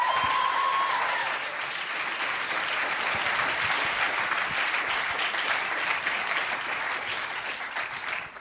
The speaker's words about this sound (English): Sarah Watkins, please give her even more applauding.